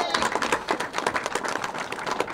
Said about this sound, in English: Thank you, Chairman Jeremy Zellner, for that introduction. Can we give him an extraordinary round of applause for his work?